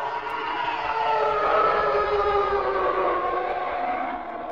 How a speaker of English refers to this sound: My third one is another spaceship. Spaceship. It's the TIE fighter sound. The TIE So the way it flies around, so, you know, the screaming elephants, as it were.